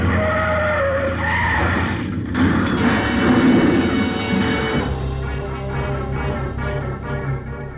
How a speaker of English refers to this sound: It was easy. The plane sort of stumbled over the car, rolled up on its nose, and stayed there.